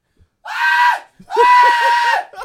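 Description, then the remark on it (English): A voice imitates a terrified scream in two loud, strained bursts, the second longer and wavering, with a short gasp between them and no other sounds. “Like, I didn't even realise I was screaming like that until I...”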